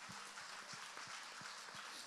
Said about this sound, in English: How many of you could keep on clapping, keep on praising him, not waiting on somebody else to stop?